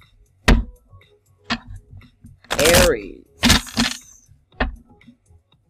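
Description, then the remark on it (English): A deck of tarot cards being shuffled for a reading for the sign of Aries, with sharp papery snaps and slaps about a second apart and a brief riffle in the middle. A voice speaks a single word partway through. “I like to get them good and shuffled because I don't want the same cards that keep coming out, right?”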